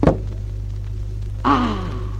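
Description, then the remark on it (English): A single sharp, solid thunk of an arrow, shot from a bow by the archer Bertrand de Gourdon from castle walls, hitting its mark, King Richard, followed after a short pause by a strained, falling vocal cry over a steady low hum. “Your arrow has found its mark.”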